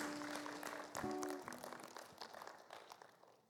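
A crowd claps in thanks, a dense burst of applause that is loud at first and gradually thins and fades, with a few steady low musical notes sounding underneath early on.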